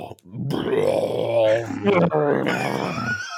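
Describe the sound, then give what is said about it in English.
A single voice makes a drawn-out, gravelly, burp-like drone for about three seconds, imitating a lightsaber's hum as a "fat saber", with wavering pitch and a brief dip midway. It is fairly loud. “It just sounds like a burp.”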